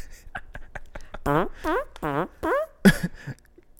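A voice imitates farting: a run of quick clicks, then four loud, wavering blurts that bend up and down in pitch, followed by a short burst of noise.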